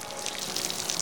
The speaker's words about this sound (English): I'm okay. I just need to get the water out of my boots.